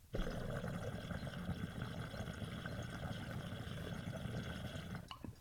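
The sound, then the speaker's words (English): Water bubbling through a double-diffused bong percolator, a steady, dense, purring burble of fine bubbles that holds evenly for about five seconds before stopping, with no talking. “you're gonna notice that purr that that extra diffuser adds.”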